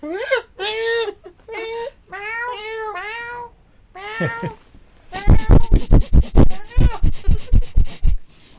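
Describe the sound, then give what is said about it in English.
Human voices reenact a cat's obnoxious meows with a string of whiny, drawn-out meows, loud, followed by a rapid run of about a dozen sharp, rhythmic bursts. “I would love for Steve to put a supercut of all his obnoxious meows right here”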